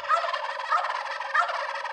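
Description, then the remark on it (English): A wild turkey gobbles loudly, a rapid, rattling, bubbling call that surges in three quick pulses over about two seconds, with no voices present. “I think the wild turkey is a 5 gobble bird, but you know, with your score and my score, this wild turkey is a 4 gobble bird.”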